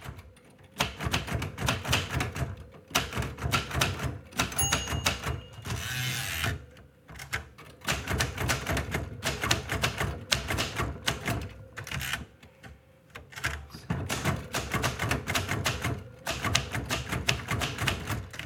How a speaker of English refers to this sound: It's someone who has recorded himself or herself typing out masterworks, either on a mechanical typewriter or a keyboard. It's a way of channeling the drive to write through pure sound.